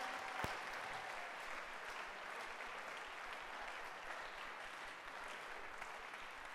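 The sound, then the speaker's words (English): Steady applause from an audience, many hands clapping in a dense, continuous patter at an even volume for several seconds, with a single sharper pop near the start. “Clap your hands for him.”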